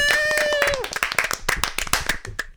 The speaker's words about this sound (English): The audience claps. Woo!